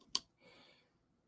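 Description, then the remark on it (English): A single sharp key click on a computer keyboard, heard over an online call, followed by a softer, brief clatter of keys. Quiet, with no voices. “In Lens, we can hear you typing as well.”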